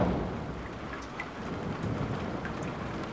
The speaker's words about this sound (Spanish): Then they waited for a proper downpour.